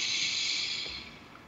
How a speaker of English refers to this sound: And let's breathe in through our nose. See how big you can make your belly. A little bit more. And out through your mouth like through a straw. Wonderful. Let's take another breath.